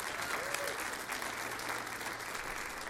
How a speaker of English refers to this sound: Give him one more round of applause.